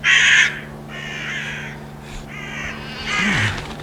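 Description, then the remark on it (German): An alpine chough gives four loud, ringing calls in quick succession, each a shrill, buzzy note lasting about half a second, over a faint steady low hum with no talking. “Aber was hast du denn da in deinem Schnabel?”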